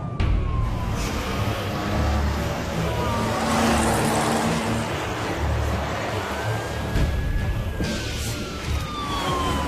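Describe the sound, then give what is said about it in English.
A traffic patrol police siren wails in slow rising and falling sweeps over loud, rushing road and engine noise as police pursue a speeding 1926 Bentley doing 110 just east of Slough, off the M25 at junction 16. No one speaks. “Just need to deal with the traffic patrol on my tail.”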